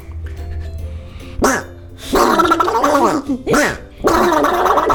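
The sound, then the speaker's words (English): A person voices an angry duck, making harsh, raspy, gargling quacks in loud bursts that rise and fall in pitch, with brief pauses between them. “Angry. Angry duck.”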